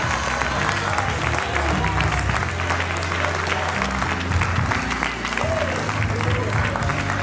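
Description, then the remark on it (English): An audience at a worship service breaks into loud, sustained hand clapping in praise of God, a dense wash of claps holding steady throughout, with a low hum of voices mixed in beneath the applause. “Now give God a mighty hand clap of praise.”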